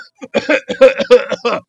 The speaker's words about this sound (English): Daniel falls to the ground, coughing up oil. Then, between coughs, I'm finished.